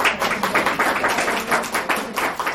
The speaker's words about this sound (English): The other thing, women's groups always clap, which is nice.